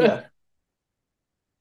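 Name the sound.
hiccup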